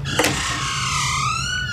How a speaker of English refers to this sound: Oh no! Not again. The door has opened. You heard it, right?